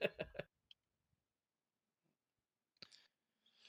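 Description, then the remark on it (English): Soft clicks of typing on a computer keyboard after a message from Kevin Wilson about his latest game: a quick cluster of keystrokes, a long quiet pause, then a few more taps, fairly faint. “I'm telling you, I'm typing right now because Kevin Wilson just sent me a message about his latest game he's working on that we're doing the Kickstarter for.”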